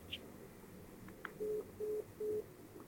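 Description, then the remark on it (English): A phone line tone after the called person hangs up on a reporter's call: three short, evenly spaced electronic beeps at a steady low pitch, heard alone over faint line hiss, with a small click just before. “That's when I called Richard, and he hung up on me.”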